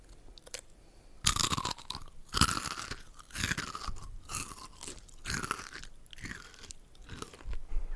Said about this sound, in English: Okay, I'm going to try and be quiet with these so it's not, like, mad loud in the microphone. Hold on. I'm going to do one ASMR crunch. Ready?